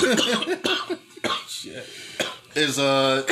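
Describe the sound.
A short coughing fit: several harsh, forceful coughs burst out in quick, uneven succession, mixed with bits of speech, before a voice carries on talking.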